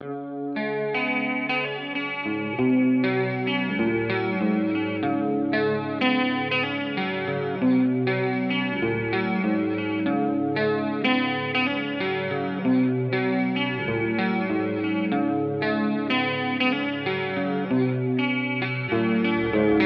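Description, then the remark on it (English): Steady music played with the reverb effect on, drenched in reverb, with sustained, washy tones and a rhythmic pulse blurring together. Loud and continuous throughout, with no voices. “The reverb on.”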